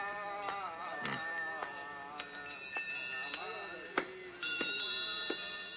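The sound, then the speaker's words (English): Many bells ring together in the shop of a thousand bells in a bazaar, struck irregularly about every half second. Their bright, overlapping tones at different pitches sustain and shimmer into a continuous jangling chorus. “That shop of a thousand bells ought to be around here someplace.”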